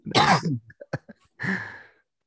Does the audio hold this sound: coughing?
yes